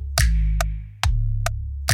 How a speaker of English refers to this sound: Another one you mentioned is you have the announcer say, metronome. Metronome. Man, I'm up to something. And then we get these ticking sounds.